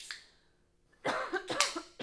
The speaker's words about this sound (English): A lot of noises right now. Yeah, probably. Cracking. Cracking coughing. Cracking coughing. I need to sip too.